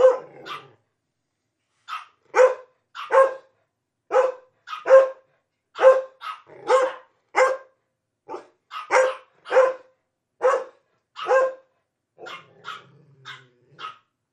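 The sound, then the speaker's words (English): Belgian Malinois dogs bark loudly at home after a knock on the front door, in a rapid, repeated series of sharp, harmonic barks, with brief pauses between bursts and no talking. “So I just flipped the record button on some of my equipment, and I recorded my dogs barking.”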